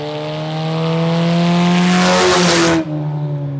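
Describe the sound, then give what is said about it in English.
A loud engine of a white 2006 Cobalt race car numbered 99 revs hard at Ona Speedway, its pitch climbing steadily as it accelerates, then cuts off abruptly and settles into a lower idle, with no voices. “Cole, who drives a white 2006 Cobalt sporting the number 99, has just embarked on his own racing career.”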